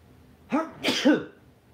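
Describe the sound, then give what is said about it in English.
A single fairly loud sneeze: a short voiced intake breath followed by a sharp, breathy burst with a brief vocal tail, then quiet. “There's a sneeze coming.”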